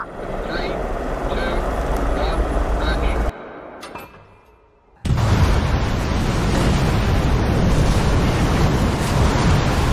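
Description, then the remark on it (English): A roaring fire whoosh sound effect: a dense, rushing burst of noise that briefly drops away to a quieter hiss, then surges back loud and steady for several seconds. “Sorry, we paid a lot for that fire. I had to That's use right. It again. We'll bring back the fire.”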